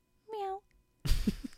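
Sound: cat meowing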